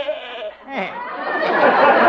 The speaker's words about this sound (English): And then there's Arthur, my goat.